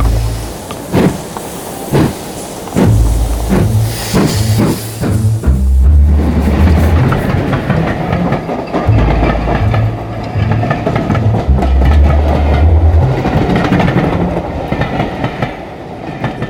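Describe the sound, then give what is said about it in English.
A few sharp clunks and knocks like a first-class train carriage door shutting, then a train pulls away from London, its low rumble steady beneath a rhythmic clickety-clack of wheels on rails. No one speaks. “After reiterating his desire for me to keep him abreast of developments, simply to report facts in the fullest possible manner, as he had it, and ensuring that I was armed, Holmes closed the door of our first-class carriage and bid us farewell.”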